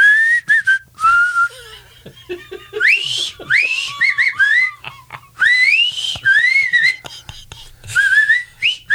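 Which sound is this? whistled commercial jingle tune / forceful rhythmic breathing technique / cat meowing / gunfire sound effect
whistled commercial jingle tune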